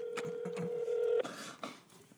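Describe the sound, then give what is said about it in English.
An outgoing phone call: a steady electronic ringback tone hums for about a second over faint clicks and line noise, then cuts off into a hiss of static. No one picks up, and nobody speaks. “Shout out to Benton for not answering his fucking phone.”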